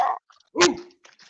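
Two sharp barks, the second louder and trailing into a brief drawn-out whine, followed by a few faint scuffling sounds.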